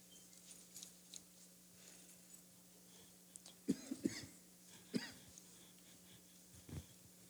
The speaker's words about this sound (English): Excuse me. I've got a little bit tickle in my throat this morning. So if I cough a little bit, that's why I wore a mask. I didn't want to cough anybody.